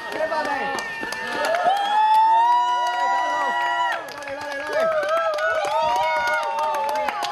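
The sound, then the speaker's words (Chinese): A group of people scream and cheer excitedly as a food cart of home-cooked dishes is wheeled out, with high-pitched overlapping shrieks and shouts that stay loud throughout, briefly dipping before rising again, with a few claps and voices mixed in. “当餐车一推出嚟，即刻收获无数尖叫啊！”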